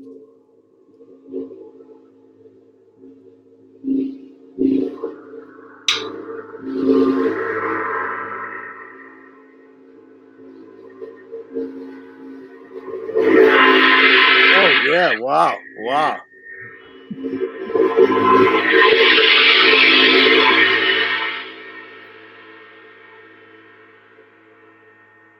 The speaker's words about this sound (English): That's awesome. That's a great gong. Pisces makes great stuff, man.